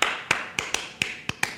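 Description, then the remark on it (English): Seven crisp hand claps land in an uneven, syncopated pattern, clapping the rhythm of a musical scale as an exercise, some closely paired and others spaced wider, each sharp and bright with a quick decay and no voices. “And so clapping through all of these while speaking the C rhythm gets really like rhythmically dissonant, I guess.”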